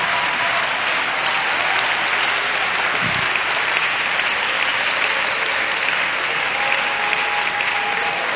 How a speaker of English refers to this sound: Oh, come on, let's clap our hands and praise Jesus.